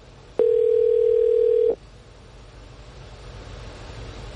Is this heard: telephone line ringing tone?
yes